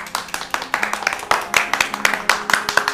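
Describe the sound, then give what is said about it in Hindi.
Steady clapping from a group of people welcoming a speaker at a gathering for a holy havan yagya fire ritual, a run of sharp, fairly loud claps that go on without pause for the whole stretch, with a faint low hum underneath. “तालियों के साथ स्वागत कीजिए।”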